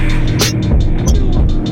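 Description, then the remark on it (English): A heavily distorted, bass-saturated hip-hop beat plays loud, with crunchy low end and regular hissy percussion hits ticking steadily over a chopped, throbbing loop. “That distortion.”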